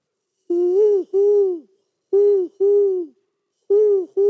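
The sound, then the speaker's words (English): A human voice imitates an owl, giving three pairs of loud hoots with short pauses between each pair, with no other sounds around them. “that wasn't me calling outside your window last night. At the bed and breakfast, we heard owls all night.”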